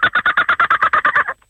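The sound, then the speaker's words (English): A man imitates a kookaburra call: a rapid, steady run of about a dozen loud, harsh cackling bursts that stops abruptly, followed by a brief catch of breath. “The man wants to do a kookaburra.”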